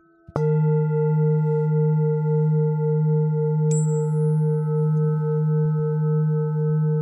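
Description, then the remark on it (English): Resonant chime tones from sound healing instruments ring out from a single strike and sustain steadily, with a second, brighter strike layered in partway through. The tones hum evenly, with no voices. “Those beautiful chimes wake up my ears, and I feel my heart open, and it hears them too.”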